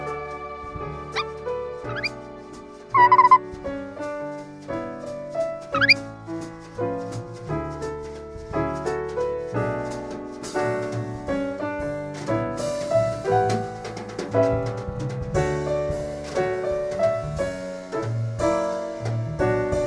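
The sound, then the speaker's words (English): A busy orchestral passage made by the orchestral, a rare African bird that can mimic every instrument in the orchestra at once, with sharp squeaky chirps and rising whistled glides early on over steady layered tones; fairly loud, no talking. “For those of you who haven't heard Season 1, The Orbiting Human Circus of the Air, the orchestral is a rare African bird that can mimic every instrument in the orchestra at once.”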